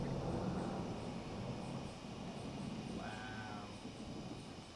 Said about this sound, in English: Wow. It's like, it's totally worth it to hear that one. Some Florida lightning and thunder.